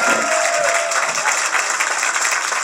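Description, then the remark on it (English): A burst of steady crowd applause, many hands clapping in a dense, bright wash that stays loud and even throughout with no voices on top. “Applause meter! Applause meter.”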